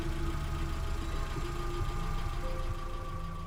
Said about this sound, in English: Buddy and Amy got into the car and drove off.